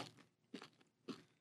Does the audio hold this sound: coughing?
no